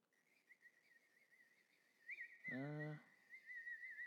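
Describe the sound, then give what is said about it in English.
Faint, thin bird calls warble steadily at a high pitch throughout, briefly interrupted midway by a short, louder human vocal sound. “I think I hear some birds.”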